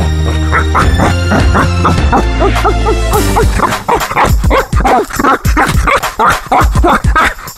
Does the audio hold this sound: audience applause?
no